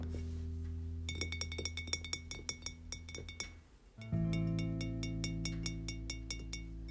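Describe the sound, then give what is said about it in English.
Quick, bright clinks of a glass tap again and again in an irregular rhythm as someone drinks water, sounding over steady background music that swells louder partway through. No one speaks. “I'm actually still gonna drink my water because I haven't finished.”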